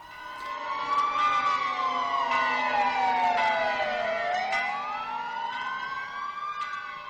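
Several sirens wail together in a loud, continuous chorus, their pitch sliding slowly down and back up, with car horns blaring among them and no voices, in Poland as the victims of a disaster are bid farewell.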